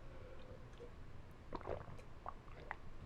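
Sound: drinking water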